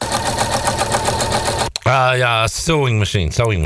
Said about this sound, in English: Sewing machine. Did I say it correctly? Sewing machine.